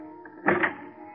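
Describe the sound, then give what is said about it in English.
A short mechanical rattle and click of a key turning in a door lock, two quick metallic bursts over a low, steady background hum, with no voices. “All start when a door is unlocked by...”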